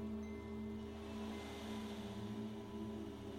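A soft, continuous wash of metal beads rolling over the base of an ocean drum, which is held by the frame and gently tilted in different directions to imitate water washing over the shore. It swells and recedes gently over a low steady hum, fairly quiet and with no voices.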